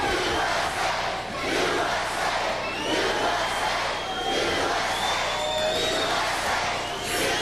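A large crowd roars and cheers continuously for wrestler Lex Luger, a dense wash of voices swelling and dipping in waves, with occasional high whistles and shouts cutting through the steady din.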